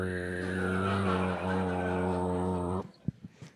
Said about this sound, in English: sometime between the oo and the e, you can kind of hear an overtone